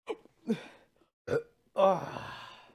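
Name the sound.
hiccups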